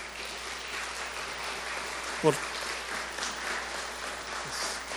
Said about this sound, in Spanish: Denle un gran aplauso al Señor. Gracias, Señor.